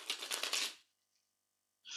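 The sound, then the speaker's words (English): Tarot cards being shuffled, a quick crisp riffle of flicking paper, then a short silence before another burst of shuffling begins. No voices. “We're all going to connect to the cards by listening in to the sound of them being shuffled.”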